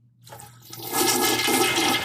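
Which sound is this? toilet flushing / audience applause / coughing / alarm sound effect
toilet flushing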